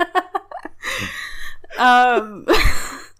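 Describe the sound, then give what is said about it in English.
Audible breaths: a few short puffs, then a long airy exhale, a brief voiced whimpering sigh, and another breathy gasp-like rush of air. “Well, I'll try to stop breathing.”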